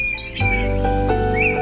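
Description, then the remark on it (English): Sharp, high twittering chips from a fork-tailed flycatcher (Tyrannus savana), a few quick notes scattered across a couple of seconds, heard over a steady low humming background. “Tyrannus savannah, the fork-tailed flycatcher. Today's Talkin' Birds featured feathered friend.”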